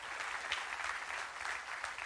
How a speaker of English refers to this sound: If God has blessed you, give Him your biggest clap, amen, and praise.